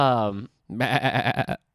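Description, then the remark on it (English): A person imitates a sheep, giving a short voiced sound, a brief pause, then a loud, quavering bleat with a rapid wobbling tremolo lasting under a second. “Because I'm a sheep.”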